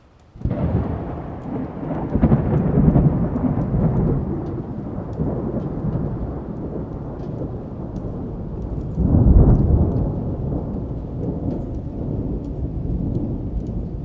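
Deep, rolling thunder rumbles steadily over a constant wash of rain, swelling into a heavier roll partway through before settling back into a low, continuous growl.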